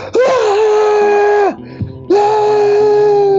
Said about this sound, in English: I scream directly in your face.